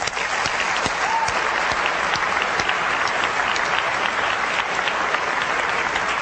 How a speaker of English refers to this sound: It shipped last quarter, and Microsoft did a terrific job on this, and I would just like to give them a round of applause.